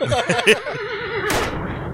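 A horse whinnies loudly, its quavering cry wavering in pitch for about a second before ending in a breathy snort.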